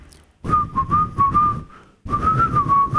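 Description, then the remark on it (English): Someone whistles a short, wavering tune in two phrases separated by a brief pause, with breathy air noise underneath and no talking. “This is going to be hard, but all of a sudden, you just hear him whistling.”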